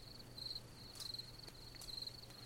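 A quiet, steady cricket chirp trills on and on in repeating pulses over faint background hum, with no voices.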